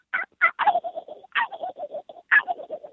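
A turkey gobbles three times in quick succession, each call a loud, high yelp breaking into a fast, throaty rattle, with no voices.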